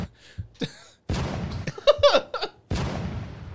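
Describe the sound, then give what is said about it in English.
Irregular cannon fire booms out in sharp, noisy blasts at uneven intervals, with scattered crackling bursts between them, fairly loud; the cannons are firing into the hull of the listeners' ship. “Very erratic cannon fire going on.”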